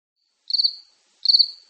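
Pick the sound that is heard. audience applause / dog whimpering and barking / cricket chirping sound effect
cricket chirping sound effect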